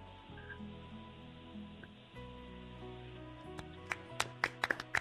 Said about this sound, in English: That was golf applause.